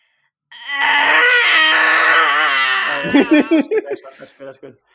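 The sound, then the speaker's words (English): A person performs, on request, a loud, sustained pained scream lasting a couple of seconds with a wavering pitch, then breaks into a string of short, choppy gasping cries. “she starts going ah, do a pain scream”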